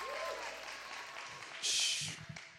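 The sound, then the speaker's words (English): An audience at the Encounter Jesus event in Toronto, Canada claps their hands in steady, dense applause as praise to the Lord, with crowd voices mixed in and a louder swell of clapping and cheering about two-thirds of the way through. “Come on, give the Lord a big hand clap of praise.”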